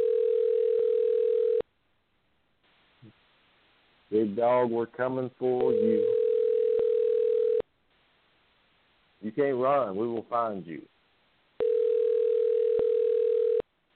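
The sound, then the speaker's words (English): A steady, mid-pitched ringback tone of an outgoing phone call repeats three times in long, evenly spaced bursts, with a person speaking loudly in the quiet gaps between rings; the call is then forwarded to an automatic voice. “but let's try to give him a call and see what he has to say.”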